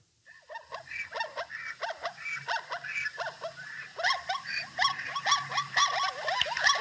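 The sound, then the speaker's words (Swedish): A chorus of zebra calls: rapid, overlapping high-pitched yelping barks that repeat in quick bursts, growing busier and louder toward the end over a low steady rumble. “Men det är ju zebra.”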